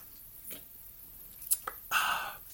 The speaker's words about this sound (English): I'm going to pause for 1 second so I can get a drink of my lovely spiked and sparkling water. This one is Colima Lime. Mm.